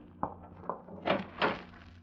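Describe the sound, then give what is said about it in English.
A closet door opening: two sharp clicks of the latch and handle, then a couple of louder scraping, swishing bursts as the door swings open, over a low steady background hum. “open the closet door and show Dale he's not in there pointing a gun at her head”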